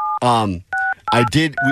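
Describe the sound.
A telephone number being dialed: about four short touch-tone beeps, each a steady two-note chord, alternating with bursts of a person talking loudly between and over them.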